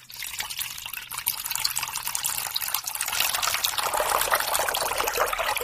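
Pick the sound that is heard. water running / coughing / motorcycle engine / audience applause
water running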